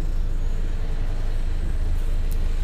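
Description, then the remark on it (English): Steady low rumble of a bus slowing down and about to stop, dense in the bass and fairly loud, holding constant throughout with no voices, a faint high hiss flickering near the end. “So the bus is slowing up now. It's just about to stop.”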